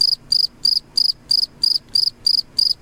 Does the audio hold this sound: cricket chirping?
yes